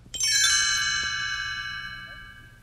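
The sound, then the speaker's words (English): A bright set of chimes rings out once, clear, its shimmering high tones slowly fading over a couple of seconds with no talking; the page-turn signal of a Pete's Dragon read-along storybook. “You will know it is time to turn the page when you hear the chimes ring like this.”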